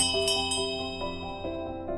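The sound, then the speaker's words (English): The last call bell at the Mitre Pub rings out in a quick series of struck chimes, each strike layering over the sustained metallic ringing of the last, steady and fairly loud with no voices. “That's the last call bell here at the Mitre Pub.”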